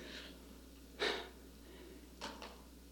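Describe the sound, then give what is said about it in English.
People at a prayer gathering take several deep, audible breaths and a sharp gasp, with one strong intake followed by a pair of softer breaths, quiet against a faint background hum. “I said we were praying to Holy Spirit to take us to gasping for him. Okay. Breathe.”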